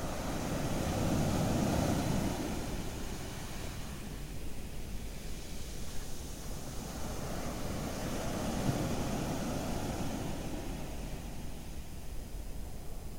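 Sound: ocean waves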